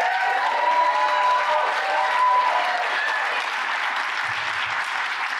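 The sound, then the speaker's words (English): An audience bursts into sustained applause mixed with cheering for Anthony, a dense steady wash of clapping with a few high whoops ringing out over it, holding at a loud, even level throughout. “You can cheer for Anthony for that.”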